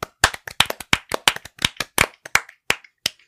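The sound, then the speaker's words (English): A quick burst of sharp hand claps from several people, made on a countdown as a sync marker for a recording, slightly out of step so the claps scatter and overlap in an uneven rhythm for about three seconds, with no talking. “All right, claps in 3, 2, 1.”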